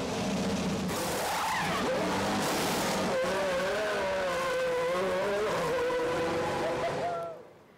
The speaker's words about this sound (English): So that was fast, right? In 2 seconds, that pit stop took under 2 seconds. In 2 seconds, they took the tires off, put new tires on, and the car is all ready, set, and go.